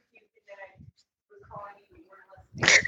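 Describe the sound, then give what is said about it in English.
A dog whines and whimpers in short, pitched bursts, then gives one louder, sharper yelp or bark at the end. It's heard on its own, with no talking. “Poor dog.”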